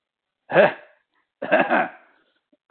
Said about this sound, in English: Clear my throat there. That wasn't the power. That was actually clearing my throat.